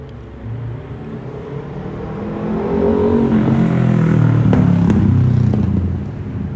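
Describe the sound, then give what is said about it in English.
A loud motorbike with no silencer roars at Stephen's Green, its throaty rumble swelling as it approaches and passes, then slowly easing off; no one speaks. “Clearly a very cool motorcyclist, missing a silencer.”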